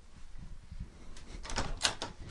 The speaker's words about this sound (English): Oh, there's a little rattling at the door. Oh, I'll go get it. Let me grab this.